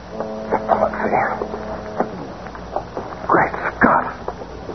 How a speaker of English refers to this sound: Boat coming, Mr. Briggs. I hear it. Maybe the killers are returning. A police boat.